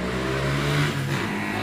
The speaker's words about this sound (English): Yeah, we just heard that. There's a motorcycle who just passed by.